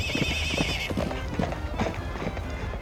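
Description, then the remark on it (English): Horses clip-clop in a quick, steady run of hoofbeats while one whinnies in a high, wavering neigh at the start, the sounds thick and busy throughout. “Giddy up, horsies. Come on.”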